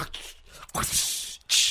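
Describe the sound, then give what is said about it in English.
A voice imitates a whip crack: a sharp burst that trails into a long breathy hiss, followed by a second quick hissing snap at the end. “Whip crack.”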